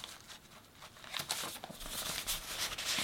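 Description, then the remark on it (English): Paper rustles and crinkles as pages of a handwritten daily task list are handled and shuffled, quiet at first and then a steady run of dry, crisp flutters and rubs for the rest of the moment. “start to just write a paper task list”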